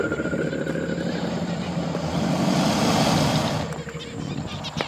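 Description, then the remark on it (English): An Australian saltwater crocodile's deep, rumbling bellow rolls on for several seconds, a thick low growl with a rough, buzzing texture that swells in the middle before easing off toward the end. “Can you be a bellowing crocodile with me?”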